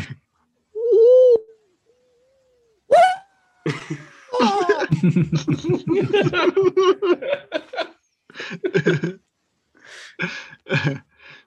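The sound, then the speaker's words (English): An eerie bird call sound effect opens with a short warbling hoot and a rising cry, then breaks into loud bursts of harsh squawks and cackling chatter that fade into a few final yelps. “one of the freaky birds makes a sound and scares him. Zach, can we get the freaky bird sound?”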